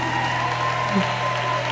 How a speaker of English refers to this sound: So please, if you're clapping, real clap. Real clap.